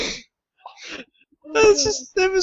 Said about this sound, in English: What's going on? Do you hear that loud scream? From who? Oh, God.